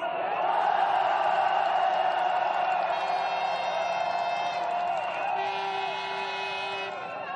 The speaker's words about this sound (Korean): 그 기세를 모아서 활화산 같은 함성 부탁드립니다.